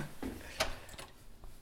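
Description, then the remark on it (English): A key working an old house door lock: a sharp metallic click stands out among several softer clicks and scrapes spread over under two seconds, with no voices. “Let me unlock it really fast.”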